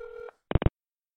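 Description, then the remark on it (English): A telephone keypad tone sounds steadily for a moment, then two quick, punchy blips follow in rapid succession, clear with no voices, as a hacker sets the phone's call forwarding to a pay-per-minute line. “Now the next time anyone dials the phone, it will place a new call to the pay-per-minute line.”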